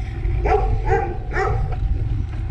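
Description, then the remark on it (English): A dog barks three times in quick succession over a constant low rumble of wind or road noise. “Hey, doggy.”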